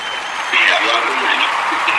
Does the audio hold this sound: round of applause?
yes